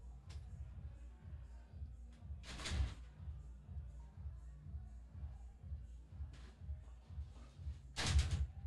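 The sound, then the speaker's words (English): A door shuts with a few sharp, thudding bangs spaced several seconds apart, over a steady low rhythmic bass of a song playing in the background. “But you think if you close the door, just give us 1 second.”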